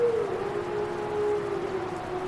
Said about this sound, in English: We leave you this week deep in a dark conifer forest in the company of wolves. A lone wolf calls out among the pines, and a large pack of timber wolves and their pups chime in.